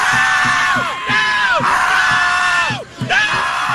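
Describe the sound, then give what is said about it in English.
A crowd screaming together at the night sky in sustained, wailing cries that rise and fall in overlapping waves, loud, with a rough, chaotic texture and brief dips between bursts. “a bunch of whacked out liberals decided to scream at the night”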